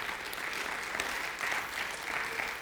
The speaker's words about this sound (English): Yeah, you can give the Lord a great round of applause.